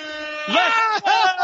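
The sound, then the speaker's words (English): A loud, sustained air horn blares steadily for about a second and a half, while a voice shouts or yells over it midway through. “It's got his own lasers, his own air horns.”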